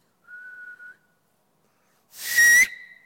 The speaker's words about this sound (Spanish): Tu existencia y mi existencia es como Dios silbando una melodía. ¿Pueden escuchar?